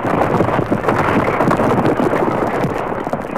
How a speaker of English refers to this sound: Suddenly, with a violent explosion, the top of the mountain blew off, and a fiery fountain of incandescent lava shot high in the air, cascading in showers over the mountainside, and soon the deadly flow of lava began.